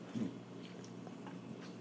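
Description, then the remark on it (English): A quiet sip from a drink, with soft wet mouth and swallowing noises over a low steady background hum and no talking. “Let me take a sip.”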